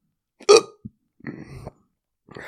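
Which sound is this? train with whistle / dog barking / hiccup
hiccup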